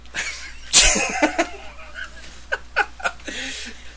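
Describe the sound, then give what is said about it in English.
A single sharp sneeze caused by allergies bursts out near the start, followed by a few scattered breathy chuckles and short vocal sounds. “I sneeze at the Heart Foundation.”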